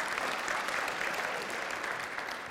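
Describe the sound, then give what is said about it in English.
A crowd claps steadily, a dense wash of many hands with no pauses, holding a fairly even level throughout before easing slightly at the end. “Give Ryan a big round of applause.”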